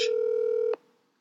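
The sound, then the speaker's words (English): A single steady electronic phone dialing tone sounds clear for under a second as a call is placed, then cuts off with a soft click into near silence. No one speaks. “we're going to call Bryce and see if he answers”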